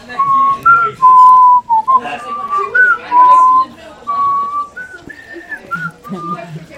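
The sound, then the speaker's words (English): A person whistles a flute-like Zelda theme melody, a run of held and gliding notes that grows breathier and less steady toward the end. “I stopped being able to whistle towards the end, but you get it.”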